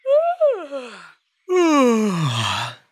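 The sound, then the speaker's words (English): Two human yawns with no talking: a shorter, rising-then-falling one, a brief pause, then a longer, breathy yawn that slides down in pitch and trails off. “Ooh, how about if you see someone else yawn? Does that make you yawn?”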